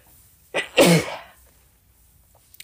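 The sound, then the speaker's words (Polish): A single loud sneeze: a quick sharp intake of breath, then an explosive burst that trails off into quiet. No talking. “Jak już się porozwodziłam tutaj nad swoimi zwierzętami i coś mi się wydaje, że zaraz mogę kichnąć, przepraszam.”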